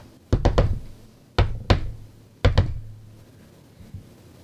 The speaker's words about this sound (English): And I knock on the door at...